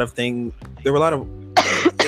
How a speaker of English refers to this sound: That was a loud cough, child. Not wrong, though. Listen, this upper respiratory infection's kicking my ass.